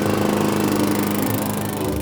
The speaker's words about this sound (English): the new neighbor fired up his lawnmower and began pushing it around his yard.